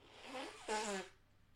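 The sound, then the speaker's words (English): A person blows their nose in two honking bursts, a softer one followed by a louder, buzzing blast that trails off after about a second. No one speaks. “Sorry about this blowing my nose.”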